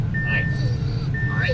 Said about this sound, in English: My car's buzzing because I got my dog with me